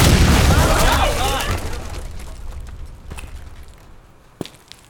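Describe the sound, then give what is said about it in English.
A door is smashed open with a loud, booming crash whose rumble fades over a couple of seconds, followed by a sharp single knock or thud a moment later. “Apologies for the door.”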